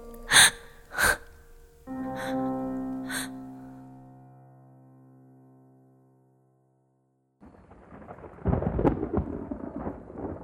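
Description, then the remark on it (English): Two sharp bursts and a lingering, fading musical tone give way to silence, then a deep, rolling rumble of thunder high above the trees builds and swells at moderate loudness toward the end. “Thunder rumbled high above the trees as Mirilia remembered the Wraith's words and knew what she had to do.”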